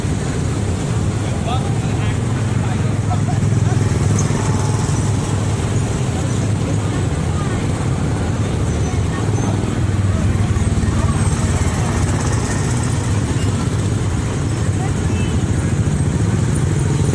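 Race car engines rumble steadily and loudly as the cars come in, a constant low mechanical drone that fills the whole stretch without pausing, with indistinct voices faintly mixed underneath.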